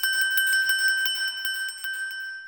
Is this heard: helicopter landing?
no